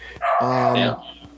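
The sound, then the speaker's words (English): A female dog lets out one drawn-out, whining bark lasting under a second, loud, with quiet background before and after. “Yeah, she's a great dog, like I said.”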